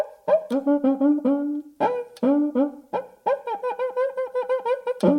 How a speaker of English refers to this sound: And me saying that it sounds like a monkey is not uncommon either. According to Wikipedia, it has been called a laughing gourd due to its sound. Many also liken its sound to that of a monkey.